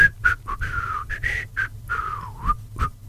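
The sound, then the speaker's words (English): A person imitates the airy, tuneless whistling of a man practicing bass guitar with headphones on: a string of short, breathy whistled notes wavering in pitch, with a brief pause between some of them and no talking. “and he'll be listening and practicing his bass guitar in the lounge, and he'll have headphones on, and I'll be working in the kitchen or in the lounge, and all I can hear is this air whistling.”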